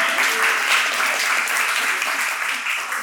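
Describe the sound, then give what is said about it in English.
An audience applauds steadily for a man called forward, a dense, even wash of many hands clapping at once that holds a constant loudness for the whole stretch, with no voices standing out. “You can clap, he's amazing.”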